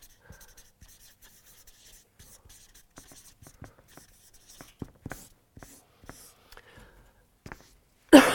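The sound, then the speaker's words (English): A pen scratches and taps across paper in short, irregular strokes as someone draws, fairly quiet, with soft scribbling textures between the sharper marks and a louder thump at the very end. “Hang on, let me just draw things as I want to draw them.”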